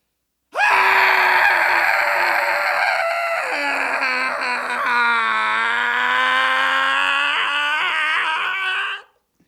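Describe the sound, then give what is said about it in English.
After a three count, several voices scream loudly together in one sustained, wavering, cathartic group yell lasting about eight seconds, strained and harsh, then cutting off abruptly into silence. “Screaming should be anywhere on today. And scream along with us.”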